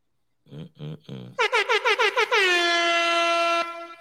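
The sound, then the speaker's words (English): A loud air horn fires a rapid stutter of about six short blasts, then holds one long, blaring tone for over a second, preceded by a few lower honking bursts. “Gotta drop the air horn for my boy, man.”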